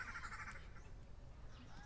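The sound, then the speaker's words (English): Faint bird calls drift over a low outdoor rumble: a buzzy trill at the start, then a few scattered thin chirps near the end, with no one talking. “Can you hear the birds?”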